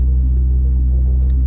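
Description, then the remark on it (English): A steady low-frequency rumble fills the inside of a car being driven on the road, with a couple of faint high clicks or ticks near the end. “I'm calling you straight from my car.”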